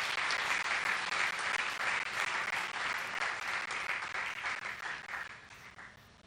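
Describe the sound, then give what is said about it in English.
Sustained applause from a large audience at a post-lunch session, many hands clapping densely and steadily, fairly loud at first and gradually tapering off toward the end, with no talking over it. “Some of them got up from sleep just now after clapping.”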